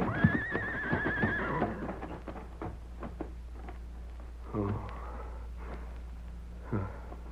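A horse lets out a loud whinny with a high, quavering call in the first second, followed by quieter snorting breaths and scattered knocks against a steady low hum.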